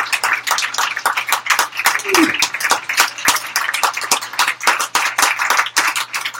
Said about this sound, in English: One more big round of applause for all of our participants in the Poem of the Year contest.